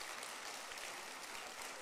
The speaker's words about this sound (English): And I want to thank everybody for being here. Let's give them a hand clap for being here.